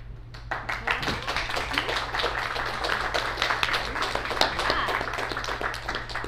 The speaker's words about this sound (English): There are some very brave audience members who have agreed to help us tonight and take on some characters' roles. Please stand so we can give you a round of applause.